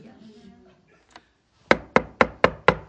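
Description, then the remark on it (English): Five firm, evenly spaced knocks on a door ring out in quick succession, loud, following a brief stretch of faint voice and a soft click. “I wonder who's at the door.”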